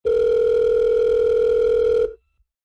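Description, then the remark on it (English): A single steady electronic ringing tone of an outgoing call made from a mobile phone, lasting about two seconds at a constant, fairly loud level before cutting off. No one speaks. “It rings a couple of times before being answered.”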